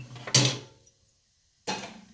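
Two sharp clattering bursts of dishes going into a dishwasher rack, each ringing briefly before fading, separated by about a second of near silence. No one speaks.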